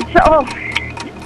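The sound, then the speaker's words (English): A game show's 60-second countdown clock for answering 10 questions ticks steadily in a quick, even rhythm, with a brief voice sounding over the first few ticks. “your clock starts now.”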